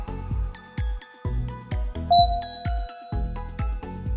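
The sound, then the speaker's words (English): A steady electronic beep tone, the cue in a quiz game for listeners to shout who is winning, sounds midway through a run of bright, rhythmic chiming hits, like a doorbell-style jingle. No one speaks. “On the beep, please shout as loud as you can who is winning.”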